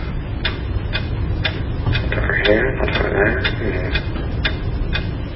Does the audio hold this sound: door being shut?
no